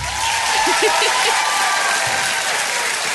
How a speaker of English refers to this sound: I like me some fake applause first thing in the morning, as I suppose everybody does. I think you deserve the fake applause.